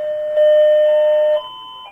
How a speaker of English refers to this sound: Oh, that's Anthony's doorbell again.